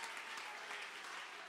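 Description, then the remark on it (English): A church audience claps together in praise of the Lord in a dense, steady wash of applause, many hands blending into a loud, continuous crackle with no speech on top. “Clap your hands, church, and give him some great praise.”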